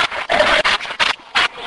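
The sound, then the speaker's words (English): A rough, raspy growl sounds in several throaty bursts of uneven length, separated by brief pauses, fairly loud and with no talking. “It sounded like a growl.”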